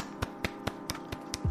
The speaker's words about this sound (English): And I usually finish this with a little round of applause. So on three. Yes. Okay, 1, 2, 3, woo.